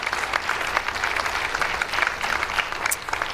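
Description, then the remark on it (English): An audience claps steadily in thanks for the musicians, a dense wash of many overlapping hand claps at an even, moderate loudness that holds for a few seconds without any voices. “Yes, you can clap, you can give thanks.”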